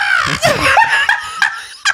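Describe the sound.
A man squawks and chirps in a bird-like voice, a run of short, high warbling calls over about two seconds, fairly loud, mixed with a bit of laughter.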